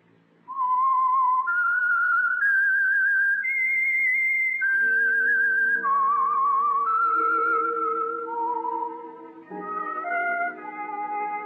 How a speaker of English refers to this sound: Whistle is your signal for the Signal Oil program, The Whistler.